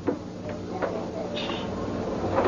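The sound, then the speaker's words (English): A chair, with a 10-year-old girl seated in it at a table doing homework, scrapes and slides backwards across a hard floor in short, rough drags with a few light knocks, over a steady background rumble; no one speaks. “You see if the chair keeps sliding backwards.”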